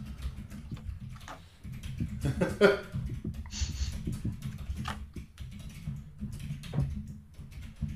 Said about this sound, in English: No, I'm just typing.